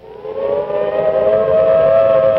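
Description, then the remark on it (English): A loud civil defense warning siren, a signal to stop and get to the nearest safe place fast, wails steadily, its tone slowly rising in pitch and holding strong with rich harmonics throughout, with no voices present. “You may be in your schoolyard playing when the signal comes.”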